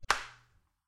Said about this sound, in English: Should we clap? But yeah, we should clap. 3, 2, 1.